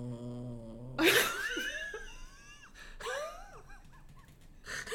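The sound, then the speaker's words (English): A male dog lying on a person's lap makes contented noises: a low, droning groan, then a breathy huff and a string of squeaky, rising-and-falling whines and grumbles, with no talking over them. “Have you ever heard that noise before from yeah, my he dog?”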